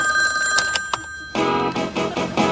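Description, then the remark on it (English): A telephone rings with a steady, high electronic tone broken by a few sharp clicks, then a louder, fuller burst of sound swells in partway through while the ringing continues, before an answering machine picks up. “I must be out, or I'd pick up the phone.”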